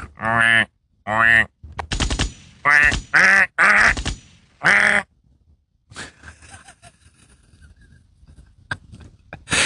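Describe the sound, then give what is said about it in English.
A voice imitates a duck call with a quick run of about seven loud, nasal, raspy quacks, then trails into quieter scuffling noise. “How do you become a fucking millionaire selling duck quackers?”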